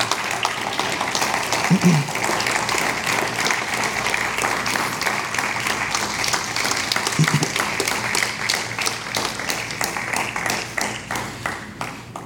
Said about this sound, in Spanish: ¿Tú le pueden dar un aplauso al Señor?